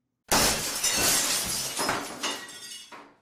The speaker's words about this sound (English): Wham! Rachel hit the cylinder. A flailing mob of Hork-Bajir literally covered her. And then, the cylinder shattered.